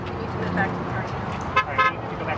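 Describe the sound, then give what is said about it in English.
A truck horn honks in two short, loud blasts close together, standing out over a steady, noisy background hum. “Ah, that is the most beautiful sound we've ever heard as the dear leader honked the horn of the truck.”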